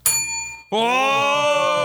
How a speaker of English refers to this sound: if you're here, ring a bell.